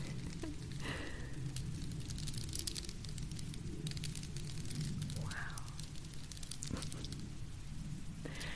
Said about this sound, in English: Do you guys like the sound of the plane? I know that some people do.